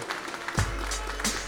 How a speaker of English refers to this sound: Hey, everyone, how about a round of applause for Cat and Cloud? Thank you.